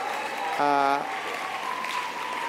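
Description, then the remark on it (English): A crowd at a film screening applauds the Australian Youth Climate Coalition (AYCC) steadily for a couple of seconds, a dense, even wash of clapping, with a short tonal whoop or cheer rising above it early on. “So big round of applause for AYCC, which is the Australian Youth Climate Coalition.”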